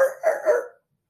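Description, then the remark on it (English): A cadaver sniffer dog, running around searching for bones on an island, yelps in a quick run of about three sharp, high cries, fairly loud, stopping abruptly and leaving silence. “So as the dog's running around doing his thing, he just lets out this huge yelp.”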